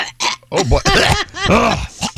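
A loud, guttural burp or throat-clearing sound, coming as several rough voiced bursts over about two seconds with brief pauses between them.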